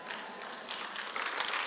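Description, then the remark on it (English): Thin, scattered applause from an audience: a soft patter of hand claps that swells slightly partway through, fairly quiet overall, with no voices. “I mean, if you're going to clap, like clap. That was weak.”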